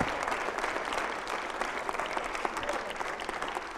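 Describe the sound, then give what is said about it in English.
An audience gives the Lord a hand clap of praise, a steady wash of many hands applauding together at an even, moderate loudness throughout, with no voices standing out. “Come on, let's get the Lord another hand clap of praise.”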